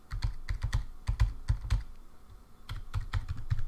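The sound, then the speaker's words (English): Quick computer keyboard typing as a password of random numbers is entered: a burst of crisp key clicks, a brief pause, then another run of rapid keystrokes. No voices. “Let's give it a password.”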